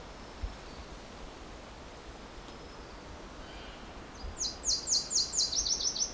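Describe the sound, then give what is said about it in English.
A Nashville Warbler sings its alternate song, a harsh, rapid series of sharp chipping notes, about seven or eight in quick succession, rising out of steady background hiss after several seconds of quiet. “A lot harsher sounding though, to my ears.”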